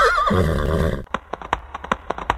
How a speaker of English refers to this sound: And they took his horse, took him off the harness, hit him on the back, and made him run away.